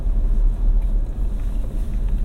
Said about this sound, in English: Somewhere, you know, I'm on the road, obviously, driving, and this is one way to experience people in motion. And I get to see a lot of people, though not very personally, but pass numerous people in the car.